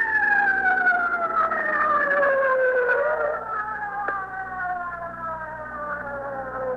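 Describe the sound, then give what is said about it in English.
A loud ambulance siren wails as the ambulance comes up, its sustained tone gliding slowly downward in pitch over several seconds, with a low engine rumble underneath and no one speaking. “The ambulance is just coming up here. I can't hear anything you say.”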